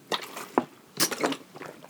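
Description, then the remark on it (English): Someone takes a few quick, wet sips of water from a bottle, with soft slurping and swallowing noises in short bursts and no talking. “I'm doing the podcast this week just drinking H2O.”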